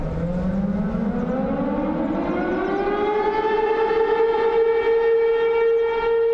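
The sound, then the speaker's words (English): A civil defense siren, the only one of its kind left in the country and heard by townspeople as a lunchtime whistle, winds up from a low tone to a steady high wail, loud and sustained with strong harmonics, sounding alone over a faint rumble of background noise. “This siren is the only one of its kind left in this country.”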